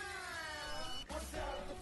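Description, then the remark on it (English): A person imitating a cat gives a drawn-out, meow-like wailing cry that slides slowly downward in pitch, followed by a brief break and a second rougher, shorter cry, both fairly loud. “Meow, what the fuck? I've never heard a frog make that sound.”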